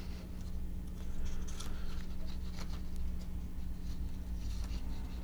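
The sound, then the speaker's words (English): Crinkly rustling of newspaper pages being handled and turned, in a series of irregular papery swishes and crackles over a low steady background hum, with no one speaking. “I'm sorry, I'm just turning pages here.”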